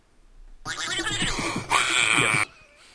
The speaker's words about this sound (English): That's the brain fart noise.